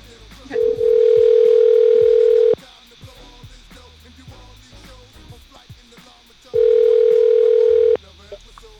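A telephone line tone sounds twice while a copied-and-pasted number is called back, each a steady, loud hum lasting a couple of seconds, separated by a long quiet pause with faint background noise, like a call ringing through.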